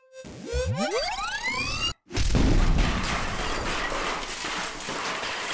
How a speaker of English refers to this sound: It's not like a thermal detonator, but it's a nice enough explosion that it took out that room.